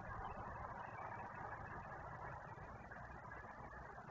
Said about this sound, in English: Oh, shit. All these damn trucks. This is crazy, man. That's a lot of fucking trucks.